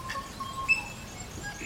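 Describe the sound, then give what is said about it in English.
A bird sings a short five-note song of thin, clear whistled tones, quiet over a soft hiss of background noise, with one brighter high note standing out midway. “A bird sings a 5-note song, a kind of variation on Gershwin's first prelude.”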